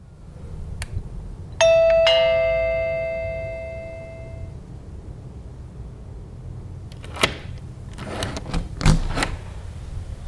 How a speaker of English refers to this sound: You are visiting your Japanese friend's house for a dinner party. You ring the doorbell, and your friend opens the door.